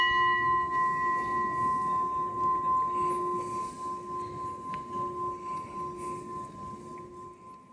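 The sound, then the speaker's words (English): A gong rings out with a long, steady metallic hum, its layered tones shimmering and gently pulsing as the resonance slowly fades over several seconds, with no talking. “We'll give him or her a gong.”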